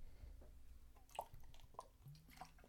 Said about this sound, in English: Going to mix a little water in here.